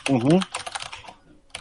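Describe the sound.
Rapid clicking keystrokes on a computer keyboard, a quick burst of typing followed by a short pause and a few more taps, after a brief voiced sound from someone at the start.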